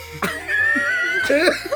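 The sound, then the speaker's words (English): Two sharp, raspy coughs from a woman after smoke is blown in her face, one near the start and another near the end, with a strained voiced sound stretched between them, fairly loud. “blow smoke in her face so she coughs.”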